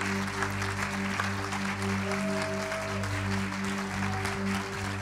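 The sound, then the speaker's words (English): A crowd claps steadily and loudly for a speaker in the morning, a dense wash of applause lasting throughout, with a low sustained organ-like hum underneath and no voices. “Why don't you just give John a big round of applause this morning.”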